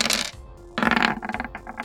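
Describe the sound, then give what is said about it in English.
Dice clatter across a hard tabletop in two bursts, a brief rattle and then a longer run of rapid clicks and bounces, fairly loud, with no voices; the roll comes up 3. “Hey, you rolled what I rolled against you. Hey. 3 on the dice.”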